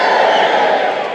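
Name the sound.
audience cheering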